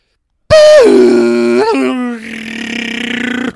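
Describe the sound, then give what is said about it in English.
A person loudly imitates a dial-up modem with their voice: a high tone sliding down into a steady buzzing drone, then a raspy, hissing warble lasting about three seconds. “Speaking of nostalgia, here's my attempt at a modem sound.”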